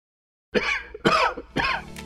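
Three harsh, raspy coughs in steady succession, fairly loud, each about half a second apart, with no talking around them.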